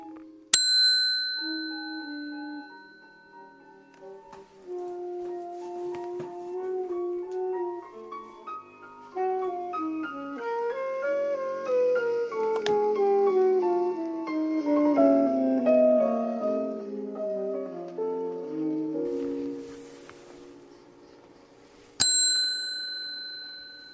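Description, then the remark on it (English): A small, bright bell rings with a sharp ding at the start, then a melodic musical passage plays before the bell rings once more near the end, clear. The bell is rung from the dashboard of a Toyota. “Okay, now that would be the exact same bell, or same sounding bell, as the one you would have heard in the basement if I was ringing it from there.”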